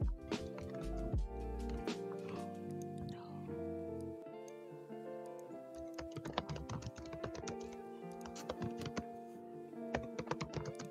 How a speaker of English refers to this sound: Quit clacking them keys, right? Jesus Christ, that was me that time.